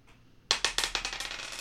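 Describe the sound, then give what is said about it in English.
A six-sided die clatters onto a glass tabletop, bouncing with a quick run of sharp, bright clicks that speed up and fade as it rolls to a stop. Fairly loud, with no talking. “Do you want me to roll it on my glass top so we get authentic”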